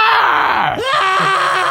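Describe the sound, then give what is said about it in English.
A person loudly imitates a screaming goat: one harsh, strained, high-pitched wail lasting under two seconds, cracking briefly partway through before carrying on, alone with no talking. “Is that a screaming goat? Or a pterodactyl?”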